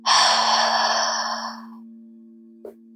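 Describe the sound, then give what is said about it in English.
A single deep, breathy exhale through the mouth during a guided breathing exercise, following a deep inhale through the nose, strong at first and fading out over about a second and a half, over a steady low drone, followed by near-quiet and a faint brief tap. “Exhale through the mouth.”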